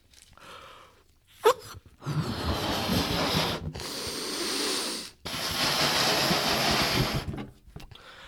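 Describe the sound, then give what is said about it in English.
Long, steady breathy blows of air stream into a balloon in two extended bursts, with short pauses and a squeaky rubbery stretch between them, no talking throughout. “You know, because I thought it would be a really good idea to conduct a podcast episode while blowing up balloons, right?”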